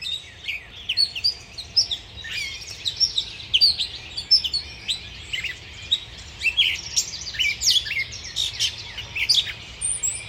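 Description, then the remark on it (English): A dense chorus of birds singing and chirping in trees outdoors, many overlapping calls and trills continuing throughout, bright, with a faint low background rumble and no talking. “And then I walked outside, and I was greeted with a symphony of song from birds in the trees.”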